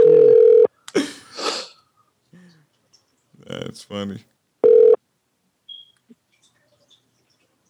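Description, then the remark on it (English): A phone call being redialed rings out: two loud, steady mid-pitched ringback tones a few seconds apart, with people talking and laughing briefly in the gap between them. “Calling right back to back.”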